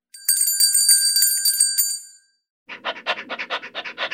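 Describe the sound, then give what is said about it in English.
A bright bell rings rapidly and repeatedly for about two seconds, close and loud, then stops. After a short silence comes a run of quick, rhythmic, breathy panting. “Pavlov was able to prove that he could control a dog's physical drool by ringing a bell”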